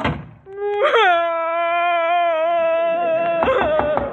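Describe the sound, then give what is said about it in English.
A woman lets out a loud, drawn-out wailing cry that climbs in pitch and holds a long moaning note, then breaks into a few short, choked sobs at the end. “What did he do to make you cry, honey?”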